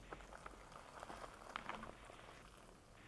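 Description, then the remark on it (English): Boiling water, about 1 3/4 cups, pours steadily into a freeze-dried beef stew meal pouch, a soft continuous splashing and bubbling with faint crackles, fairly quiet, with no talking over it. “That's a lot of water. It's boiling in there.”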